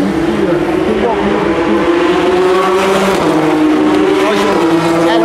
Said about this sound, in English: There go the two Porsches. The two Audis.